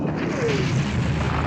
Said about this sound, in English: Did that kill him? Yeah, that killed him, and it's awesome. That is an awesome 80s explosion. That was awesome as fuck.